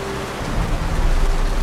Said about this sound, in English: The storm is here.